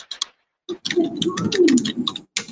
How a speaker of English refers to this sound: you have your mic open and I can listen your typing.